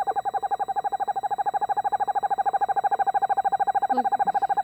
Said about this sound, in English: This is just an owl trying to get out of a birdhouse.